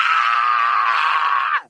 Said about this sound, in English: and the priest screamed so much that you could hear it all over. But Owen taped the priest screaming.